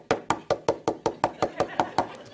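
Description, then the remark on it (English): A rapid, steady series of about a dozen sharp knocks on a door by a 2.5-year-old girl, evenly spaced, with no voices in between. “Doesn't say, all she says my name, and she's knocking like, and then I said, listen, hold on, I'll be there in a minute.”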